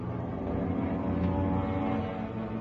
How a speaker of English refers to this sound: We're getting planes tomorrow. Planes, it must be ours.